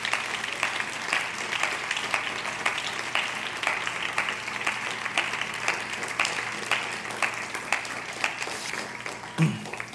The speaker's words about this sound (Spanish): Amén. ¿Qué tal si le damos un aplauso ahí al Señor?